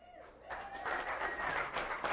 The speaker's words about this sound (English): They clap for you.